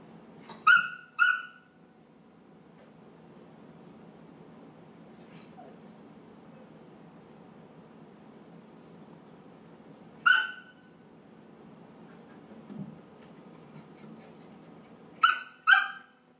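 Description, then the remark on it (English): A dog gives short, sharp barks in pairs, spaced several seconds apart, with faint whimpering and quiet background noise in between. The barks are fairly loud; no one speaks. “Sure, the other dog's like, what are you so upset about?”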